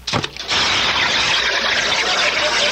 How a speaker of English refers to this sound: And now I'm going to ask Brother Sweeney here to drop this here alkali water tablet into this here glass, and I want you neighbors to listen to it fizz. All right, Brother Sweeney, let her go.